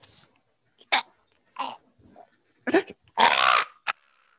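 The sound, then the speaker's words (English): A trained talking crow, the crow host of the Hooks and Crow show, caws in a series of harsh, raspy bursts, mostly short with one longer drawn-out call near the end, separated by brief pauses. “along with my very own trained talking crow host.”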